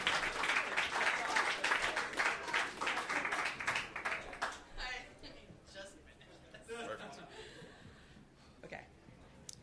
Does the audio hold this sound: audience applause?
yes